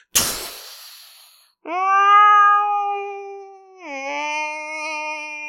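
Whale calls in the mid-Atlantic, from whales swimming alongside Navy-trained whales: after a brief noisy burst, two long, steady, tonal moans with rich overtones ring out, the second opening with a downward bend in pitch before holding. No one speaks.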